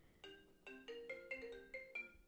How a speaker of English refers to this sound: Oh God, I'm getting a phone call